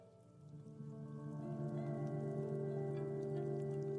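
Carbonated Nicola Coconut Cola fizzes inside a slim silver can, a steady crackle of tiny popping bubbles over a ringing tonal hum that swells slightly after the first second and then holds. No one speaks.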